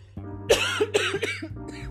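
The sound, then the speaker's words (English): A couple of sharp coughs in quick succession, followed by a softer throat-clearing sound, with a low steady hum in the background. “confirmation cough.”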